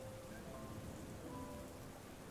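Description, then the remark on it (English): Steady rain patters on the roof of a train station platform, a dense, continuous hiss of drops with a low rumble underneath and no voices. “It's raining, and the raindrops can be heard on the roof of the platform.”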